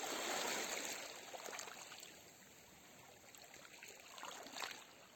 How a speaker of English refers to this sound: And as you follow your breath, become more aware of the sounds of the waves.